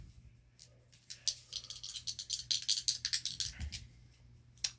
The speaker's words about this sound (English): So this is our first dice roll. Please do not roll near a phone, because we don't have to be deafening.